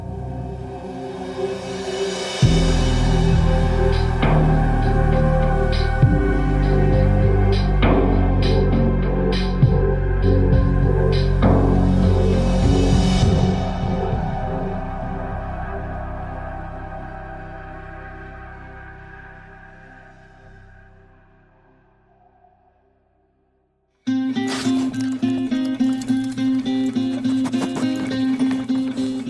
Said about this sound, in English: That is the sound of millions of air particles streaming into the nose of a Labrador retriever. Babs, seek. The dog's name is Babs, and she's working.